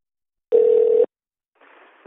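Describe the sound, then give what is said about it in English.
A phone line rings after a number is dialed: one short, steady electronic tone burst, clear, followed after a brief silence by a faint, muffled hiss. No one speaks. “Oh, it's ringing?”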